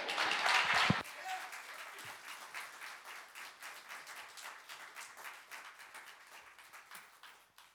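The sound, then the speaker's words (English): A crowd claps in applause, loud and dense for the first second, then settling into a steady patter of many hands that slowly fades over several seconds. “You can clap for them.”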